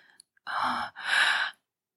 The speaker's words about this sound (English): The throbbing of her last orgasm still ringing there, her gasps struggling to make it out of her mouth.